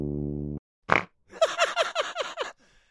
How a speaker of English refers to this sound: Getting played like a fucking farting tuba.